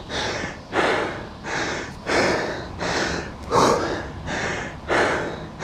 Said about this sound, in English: My breathing is getting a lot harder to catch.